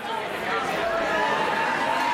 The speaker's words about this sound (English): All 2,000 graduates may not be here, but it's still a pretty big crowd at the Nashville Software School, and everyone seems to be having a good time. There's a bar set up here in the main room, and down the hall, there's cornhole and ping pong.